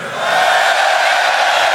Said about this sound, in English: What about, I just want to say, the people, give me a scream for Crouch if you hear a Crouchfest 2.